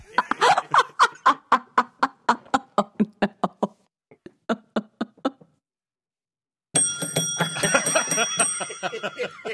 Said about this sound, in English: Oh, no. You get the bell.